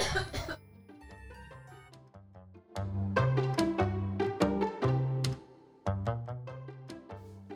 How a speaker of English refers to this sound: I'm going to cough.